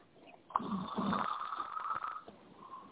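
A person snores nearby: one long, rough, rattling breath that starts abruptly, sustains for nearly two seconds, then fades to a quieter wheeze. Nobody speaks.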